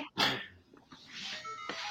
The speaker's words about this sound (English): that's coughing. Just sound, right?